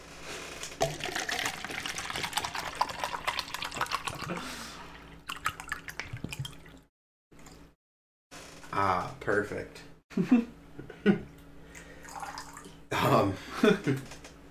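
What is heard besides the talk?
water sloshing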